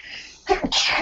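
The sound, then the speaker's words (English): A single sharp sneeze bursts out, a quick inhaled catch followed by an explosive breathy release that trails off into hiss. “Bless you.”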